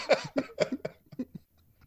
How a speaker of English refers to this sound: When you coughed, it changed. That's all I'm saying.